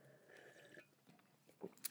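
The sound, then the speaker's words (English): Quiet sipping of homemade mead from tankards: soft mouth and swallowing noises with a couple of brief wet slurps near the end, no talking. “Look at us in our tankards here. Let's have a sip.”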